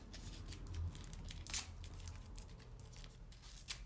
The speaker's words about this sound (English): I want you to tear up that piece of paper.